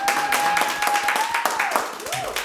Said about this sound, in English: Can I get a round of applause from everybody in the audience today? Yeah.